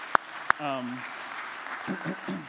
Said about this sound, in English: I mean, the staff usually end up taking care of the leftovers, but this year you did a great job. I think I'm going to applaud you guys for doing that.